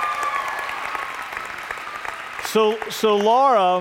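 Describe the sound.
An audience applauds in a steady, dense wash of clapping for a few seconds, then a loud voice begins speaking as the applause fades beneath it.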